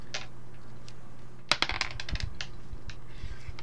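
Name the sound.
dice being rolled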